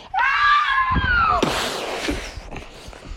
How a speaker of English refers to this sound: Screams terrorized the place as people were looking up at the walls.